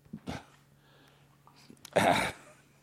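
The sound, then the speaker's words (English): A dog, Ben, a big, strong pit bull cross, scrabbling at sofa cushions for his bone that went into the sofa, two or three short, rough bursts of scratching and snuffling with quiet gaps between them and no one talking. “He's got his thing in the sofa, so he's going crazy.”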